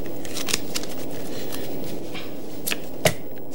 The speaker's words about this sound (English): Now, I want you to pick out all the aces from this pack of cards. Shuffle them? Mm-hmm.